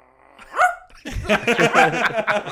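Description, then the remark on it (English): A person imitates a small puppy bark with a single high, sharp yip, followed by a burst of loud, dense vocal noise that sounds like laughter. “You're like, it's like a little puppy bark.”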